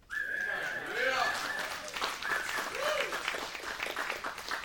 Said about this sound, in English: I can tell the age generation of the claps, okay? Some of you are like, huh? Who's that guy?